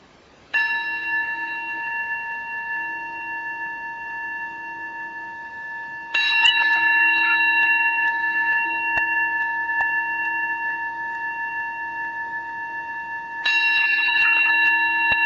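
A meditation bell is struck three times at slow, even intervals, each strike ringing out clearly and sustaining a long, shimmering tone that overlaps with the next strike.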